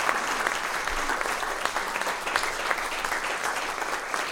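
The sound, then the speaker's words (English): A crowd applauds steadily, a dense wash of many hands clapping at once, sustained and fairly loud throughout with no pauses and no voices standing out. “And now for over a year, now you can clap, for over a year, yes.”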